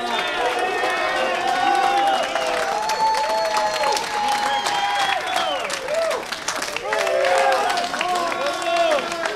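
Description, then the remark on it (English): A large crowd of hundreds of family, friends and Navy cadets cheers and applauds continuously in the airport terminal at Midway, Chicago, welcoming veterans home, with loud whoops and excited voices rising over steady clapping throughout. “As the vets make their way into the terminal, they are greeted with a crescendo of cheers.”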